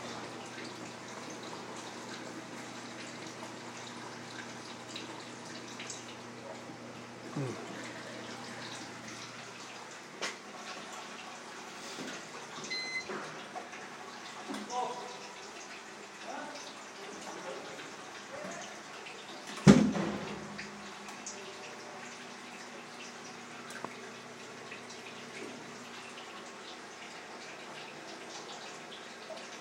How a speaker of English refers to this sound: Pretty sure water is coming down.